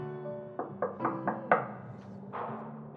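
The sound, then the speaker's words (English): Five quick knocks on a wooden door of an inmate's quarters in the old part of a prison, in an even, rapid rhythm, moderately loud, over a steady low background hum, followed by a brief rustling noise. “Up in here, we got actual wooden doors on our houses.”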